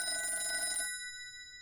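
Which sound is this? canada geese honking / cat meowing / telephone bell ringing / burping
telephone bell ringing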